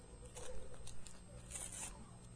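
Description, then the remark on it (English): A sealed paper envelope is ripped open by a child, a series of scratchy tearing bursts building to a brighter, sharper rip near the end, over a low steady hum. “This was the only one I sealed. So just rip it open.”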